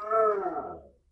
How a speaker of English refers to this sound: That was my dog. Okay. It sounded like a moo. I know, like a big moose. Well, the doorbell rang and he had a reaction. He howled.